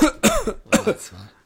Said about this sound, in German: Du brauchst gar nicht zu husten. Aber heute war weniger Husten eigentlich.